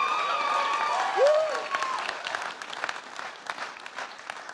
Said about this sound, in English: Stand up, …, so we can clap you properly. Come on, …. Come, this is ….